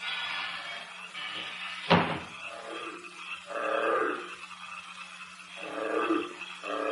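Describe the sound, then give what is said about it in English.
A bullfrog gives two deep, throaty croaks a couple of seconds apart, each a rough, buzzing swell, following a single sharp thump near the start, with no talking. “What's that, sir? A bullfrog.”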